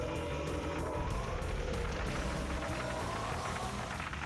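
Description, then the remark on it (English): A lawnmower engine running behind the person recording drones steadily throughout, a continuous low mechanical rumble with a faint buzzing texture and no breaks. “And unless I'm able to edit it out, you're gonna hear some of the lawnmower behind me.”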